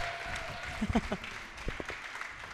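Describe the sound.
Audience applause fills the room steadily for a few seconds, a dense patter of many hands, with a few brief voices or whoops rising above it.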